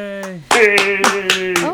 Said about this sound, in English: Yay. I even got a laugh track. Yeah, everyone's pretty excited that you're back. A clap track, I meant. Yes. Clap track. It was a clap track.